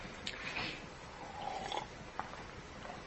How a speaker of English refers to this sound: 1 Corinthians, you know, I'm going to real quick just take a sip of water.